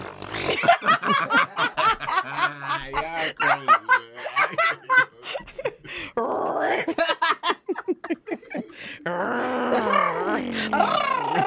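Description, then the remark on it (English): Voices make a run of loud sputtering and growling mouth noises that imitate farts, with bursts of snickering and groaning mixed between the raspy blasts. “That's what a fart is. Farts is violent.”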